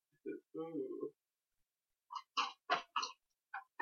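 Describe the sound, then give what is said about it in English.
A short hummed vocal sound, then a series of about six quick, airy slurping sips of coffee from a cup in an uneven rhythm, with pauses between them and no talking. “I have only had one cup of coffee all day.”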